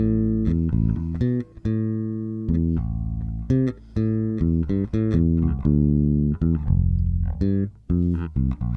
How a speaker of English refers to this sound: So those are required bass lines, part one.